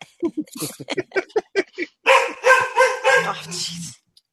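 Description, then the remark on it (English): A dog barks in a quick string of short, sharp yaps, then breaks into a longer, louder run of drawn-out, tonal barking and whining before it stops abruptly. “Somebody must be walking by. Yikes. Yeah, your dog.”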